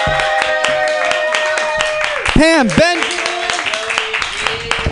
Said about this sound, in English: Clap your hands wildly